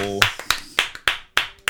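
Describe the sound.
Applause welcoming a guest, made of a handful of sharp, separate hand claps, about seven in under two seconds, in an uneven rhythm. A brief voice trails off just before the first clap.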